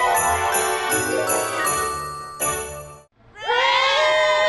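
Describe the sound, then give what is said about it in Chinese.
A crowd of nearly 30 fans screams loudly and continuously at the arrival hall of a Hong Kong airport, greeting an arriving Korean star on a cold evening, with bright chiming tones over the first half. The noise briefly drops out, then a fresh surge of high-pitched shrieking erupts. “相信大家在机场见到韩星 … 亦都尖叫声不绝”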